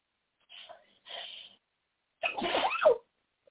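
A single loud sneeze from allergies, preceded by two quick breathy inhales as it builds, then a sharp explosive burst with no talking around it.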